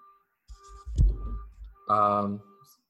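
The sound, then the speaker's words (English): A faint, steady electronic alarm tone sounds continuously outside while people talk over it, its beeping partly masked by the voices. “That alarm outside is sounding for some of these players.”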